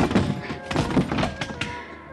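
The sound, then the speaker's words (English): A car door slams hard against a man, giving a run of heavy, muffled thunks in quick succession, fairly loud, with no talking. “Managed to half Nelson and let the car door workers my blackjack.”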